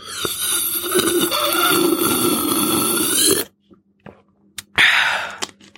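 Someone drinks water: a steady, noisy stretch of sipping and swallowing for several seconds, then a short pause, a sharp breathy exhale and a few faint clicks.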